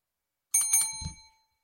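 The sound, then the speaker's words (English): A bell rings loudly, struck in a quick burst of three bright metallic dings whose ringing tone lingers and fades, with a dull low thump near the end. “That bell rang inside of my cerebellum.”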